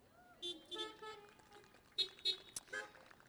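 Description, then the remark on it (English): Car horns honk in a quick series of short, blaring toots, some overlapping, at an uneven rhythm, from cars outdoors at an outdoor church worship service, the drivers honking as part of the worship. “During worship, when Brian started honking his horn at first, my first thought was, "What?”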